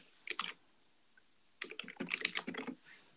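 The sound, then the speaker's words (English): Quick bursts of keyboard typing, a short flurry of key clicks, a pause, then a longer run of rapid keystrokes, fairly crisp with no voices. “I love the typing.”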